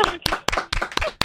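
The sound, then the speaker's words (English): Several quick, sharp hand claps land in a steady, lively rhythm, fairly loud, with a few people clapping together over a bit of room noise; hosts clapping in a studio. “We're clapping in the studio.”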